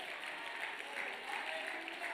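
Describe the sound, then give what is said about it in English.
An audience claps steadily in the name of the Lord Jesus, dense overlapping hand claps forming a continuous, fairly loud wash of applause with no clear individual beats and no speech. “Oh, somebody clap your hands into the wonderful name of the Lord Jesus.”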